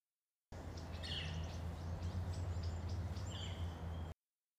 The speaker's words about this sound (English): In the 1980s, two species, red and yellow-shafted flickers, were found to be genetically very similar and were merged taxonomically into one species, the northern flicker.